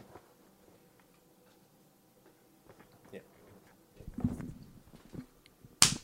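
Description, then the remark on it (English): A single sharp, loud hand clap, made to sync a recording, rings out near the end, following several seconds of quiet shuffling and faint low murmuring. “Let me know when you're ready. I'll do the clap.”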